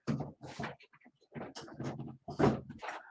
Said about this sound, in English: But if you get that out of the way, I'll move this chair over a little bit.